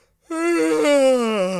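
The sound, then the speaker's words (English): A loud, drawn-out yawn, voiced by someone imitating it, rising abruptly and then sliding slowly down in pitch for over a second, with no other sounds around it. “I mean, I like a loud yawn as much as the next person, but not when a film's on.”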